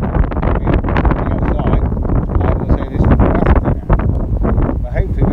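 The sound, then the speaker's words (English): Strong wind buffets the microphone in a loud, continuous roar and rumble for the whole stretch, with muffled voices barely coming through underneath. “Well, you can hear the wind, but you might not be able to hear us very well.”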